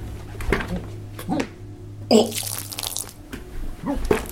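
Someone vomits onto an interview desk, floor, chair and a person's shoes: a few short, strained gagging bursts, then a loud gurgling heave and a wet splatter of liquid, followed by more retching sounds with a low hum beneath.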